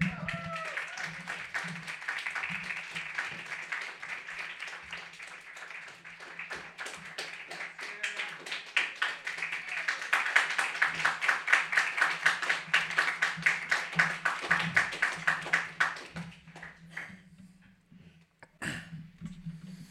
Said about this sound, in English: Okay, well, the next poet is, I think, at table 4, but give him a warm round of applause.